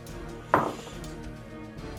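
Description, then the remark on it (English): Dice, rolled for initiative, land on a table with one sharp, hard clatter that quickly rattles to a stop, followed by quiet background and a faint tap near the end. “I've got to roll my own initiatives here.”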